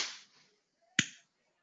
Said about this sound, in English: I just want you to clap, because there is a certain release of fire on your on our right hand. I want such people to clap 3 times. Just clap.